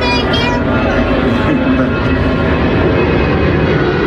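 A loud, steady roar of an airplane flying overhead, with a high whining engine tone that fades slightly after the first moment, filling the whole clip.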